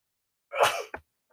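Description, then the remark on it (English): A single sharp sneeze bursts out, a quick breathy blast followed by a brief trailing catch, then silence with no talking. “Bless you.”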